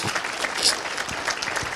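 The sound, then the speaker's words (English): An audience claps steadily, many overlapping hand claps forming a dense, even patter with a few sharper individual claps standing out, sustained at moderate loudness without speech. “I'm going to wait while you clap your hands there.”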